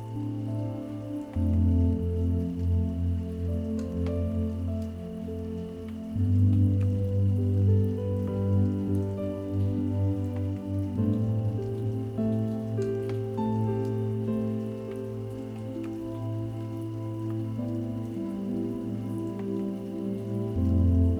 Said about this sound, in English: Gradually, the raindrops become just a little louder. Creating a calming orchestra of sounds. And they sing you to sleep.